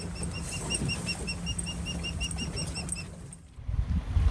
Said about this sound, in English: Here, as we spot seals sunning themselves on rocks and hear a foghorn in the distance, we pass an osprey's nest. If you listen carefully, you can hear the fledglings.